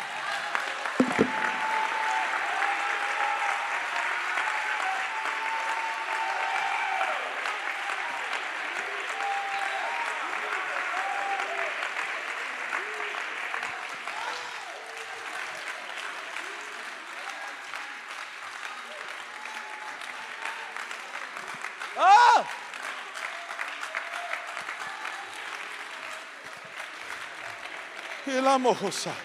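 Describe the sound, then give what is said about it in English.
An audience claps enthusiastically, a dense, sustained wash of applause lasting throughout with steady loudness and a couple of brief sharper bursts near the end. “Now with everything in you, clap with everything in you.”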